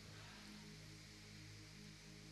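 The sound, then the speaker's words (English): Steady rain on a corrugated iron roof, an even, continuous hiss with no gaps, fairly faint, with a low electrical hum underneath and no voices. “Are you going to hear me with the rain?”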